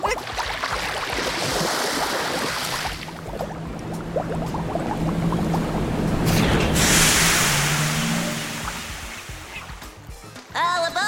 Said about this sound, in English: Is that a tiny submarine that just pulled up and a small person about your age that just welcomed us aboard?